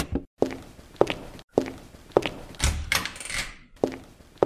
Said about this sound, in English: Samantha hangs up the phone and opens the door to the landlord's office.